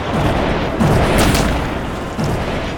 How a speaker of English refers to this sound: The cannons go off.